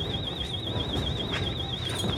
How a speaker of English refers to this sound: Door wide open, the alarm's going off.